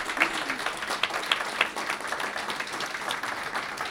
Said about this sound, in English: What an intriguing note to end on. A round of applause for our guests.